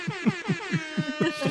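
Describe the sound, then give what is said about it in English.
A rapid run of blaring, buzzy horn blasts, about seven short pulses in quick rhythm, loud, like the classic air horn sound effect, with no talking. “Air horn!”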